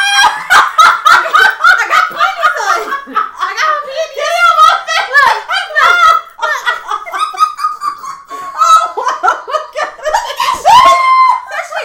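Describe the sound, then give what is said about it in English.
A quick series of sharp slapping claps, buttocks smacking together, rings out amid loud, excited laughter and shrieking voices, with people talking over the commotion. “Speaking of clap, that's exactly what I'm about to show you. My little booty was clapping.”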